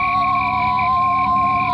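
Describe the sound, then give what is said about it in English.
An eerie, shrill whistling from the floor above in a supposedly deserted house holds a steady high pitch with no tune, sounding loud and unbroken for under two seconds, with no voices. “It was the sound of whistling on the floor above.”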